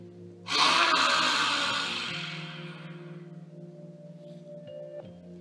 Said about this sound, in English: One more lion's breath here in fish pose. Deep breath in.